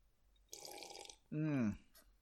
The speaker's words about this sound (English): I'm going to have a sip and try to figure that out.